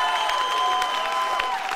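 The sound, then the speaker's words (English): An audience claps in praise of Jesus during worship, a dense, steady wash of many hands applauding at an even level, with a sustained musical tone ringing underneath and no speech. “Come on, and if we're going to give him a clap, let's give him a big clap of praise.”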